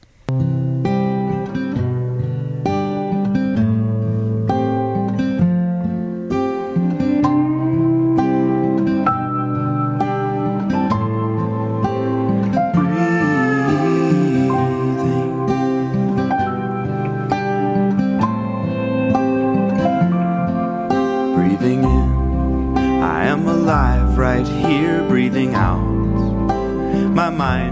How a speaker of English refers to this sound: My daughter always tells me it's like that yoga rock folk song.